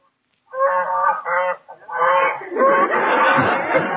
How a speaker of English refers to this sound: Sounds to me like a wild geese honking. Yeah, it is a goose. I don't know how wild it is.